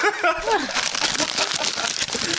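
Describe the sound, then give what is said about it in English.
A brief voice at the start, then steady crinkling and rustling of a piece of paper being unfolded to read what it says, a dense crackly texture that continues to the end. “I found a piece of paper in your anus. Let's see what it says.”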